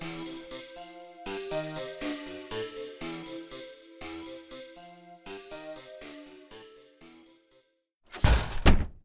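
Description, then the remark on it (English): The screen door of a camp office is thrown open and bangs loudly against a wall near the end, one sharp clattering impact that follows several seconds of soft tonal music. “Lisa threw open the screen door to the Camp Cuyahoga office, and it banged against the wall”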